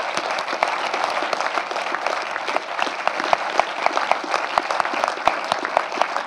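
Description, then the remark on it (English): A large audience at a BAFTA Kids special screening claps steadily for the Short Form Film Company and CBBC. Dense overlapping handclaps form a loud, continuous wash of applause with sharp individual claps popping out, sustained for several seconds with no speech. “So please, can we have a huge round of applause for them for making this possible?”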